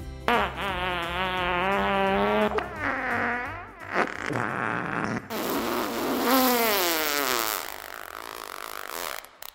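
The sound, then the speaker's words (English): A fart sound effect added to a story: a long, loud, drawn-out fart that sputters and wavers in pitch, breaking into a few stretches over nearly ten seconds, its buzzy tone rising and falling. No one speaks. “And sometimes, that reason is a guff.”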